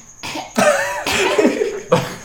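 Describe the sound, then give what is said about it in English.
A person imitates a cough, voicing several rough hacking bursts in quick succession, loud and breathy with no other talking. “Next to you, you hear a cough.”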